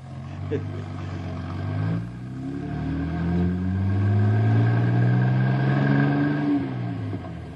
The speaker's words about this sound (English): As soon as the buses get close to camp, all the animals in the forest will head for the hills. Wouldn't you do the same thing, old-timer, if 50 energy-packed boys suddenly avalanched out of two buses?